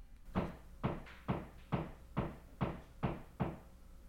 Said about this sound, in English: We'll persevere. We'll persevere through the hammering.